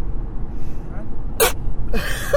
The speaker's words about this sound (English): That's a quite interesting sneeze.